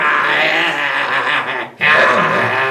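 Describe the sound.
A voice imitates a jazz drummer's gravelly, throaty growl made while drumming, held loud for over a second, then a brief break before a second rasping growl follows.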